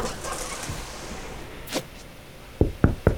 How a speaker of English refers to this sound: Try that again. What? And this time, try knocking.